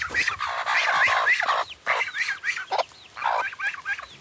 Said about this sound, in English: And then there's this duck. Let's see if we can get noise from the duck. The duck is like the like the hall monitor. She's the one who's in charge of kind of herding all of the other birds. That's her.